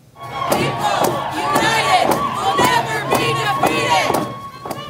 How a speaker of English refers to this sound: A rally in support of a Northern BC First Nation attracted a crowd of hundreds in Vancouver today.